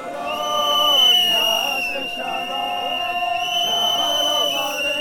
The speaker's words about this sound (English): You can already hear the whistles trying to drown out the women trying to pray.